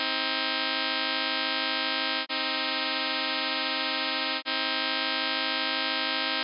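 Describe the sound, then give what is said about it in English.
A sustained, buzzy minor-third chord sounds three times in a row, each held steadily for about two seconds with brief gaps, the tuning switching from pure to equal and back to pure. “Let's hear the minor third one now. Pure, then equal, and then pure.”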